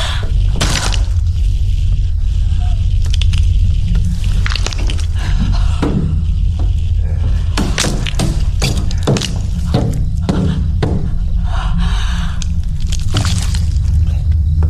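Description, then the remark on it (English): Heavy, repeated stomping blows with wet, crunching squishes as a foot stomps on and crushes a hand caught in a door, landing in irregular bursts over a steady low rumble. The impacts come faster toward the middle, with no voices. “But yeah, he basically just American History X styles that hand and just stomps the hell out of it.”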